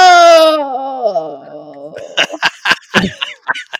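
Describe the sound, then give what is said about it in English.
A loud, drawn-out agonized scream starts high and slides steadily downward in pitch for about two seconds, then gives way to a string of short, choppy vocal bursts. “That sound gives just that's better than a Wilhelm scream.”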